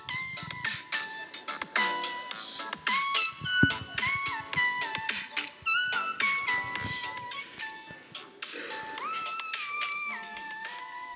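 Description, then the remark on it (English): A mobile phone ringtone plays a bright, melodic tune of stepping electronic tones, repeating steadily at moderate loudness for several seconds with no one speaking over it. “I like that ringtone.”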